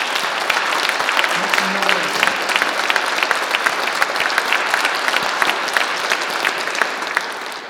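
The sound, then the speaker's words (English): An audience gives a clap offering to God, clapping steadily, a dense, even patter of many hands sustained at a consistent loudness for several seconds, tapering slightly toward the end. “So I want to invite you to give a clap offering to God.”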